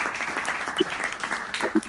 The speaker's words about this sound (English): No, thank you. Can we get a clap on that? Can we get a clap on that?